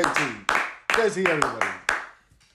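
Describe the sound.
A brief round of applause made of a handful of loud, scattered hand claps, irregularly spaced and striking over a voice talking throughout, with the clapping fading out near the end.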